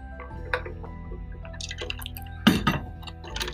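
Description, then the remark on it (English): Water drips and trickles, a run of small liquid plops and splashes with a brief louder splash midway, over a low steady hum. “He didn't share his icy cold water.”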